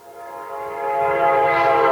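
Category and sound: vehicle, train horn sounding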